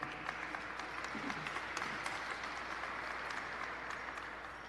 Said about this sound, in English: And right there, side by side with me on this bill, with changing the name and other bills drastically affecting Native American people and our women, is Assemblymember Ting. So I want to give him a round of applause there.